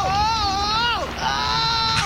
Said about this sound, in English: That's the fakest yell.